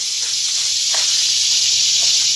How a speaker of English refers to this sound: Well, what could be worse than the coming cicadas?